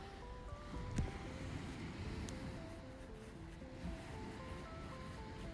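Steady roar of ocean surf washing onto the shore at a beach at night, a broad continuous rush with a slightly louder surge near the start, recorded outdoors with some wind and faint tonal hum in the background.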